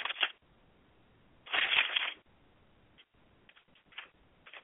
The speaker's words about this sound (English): I want to read something still. And I'm turning pages to get to it. Okay, I'm still turning pages.